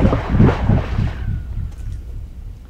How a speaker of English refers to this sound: This is a good sound. You'll like this. Mark picks a rock up off the ground and he throws it into the well, just a little pipe sticking out of the ground. He was right. I liked the sound.